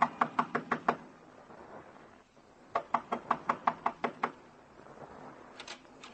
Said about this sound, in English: Up a flight of stairs, down a hall whose walls are closer against you than they were the night before. Knock on the door.